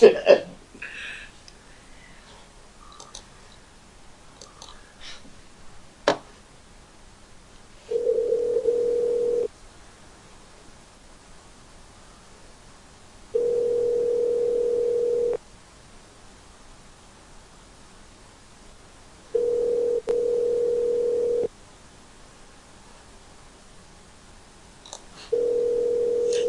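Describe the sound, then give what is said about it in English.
Outgoing call ringback: a steady, mid-low electronic tone sounds in two-second bursts separated by about four seconds of near silence, four times, after some faint rustling and clicks at the start. “Whose number is this? They haven't answered”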